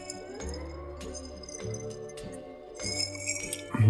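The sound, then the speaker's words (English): A drinking glass holding a tiki drink clinks several times as it is gripped and lifted to taste, sharp light taps spaced out over a low steady background hum, with no one speaking. “So let me taste it. Make sure I got a good grip.”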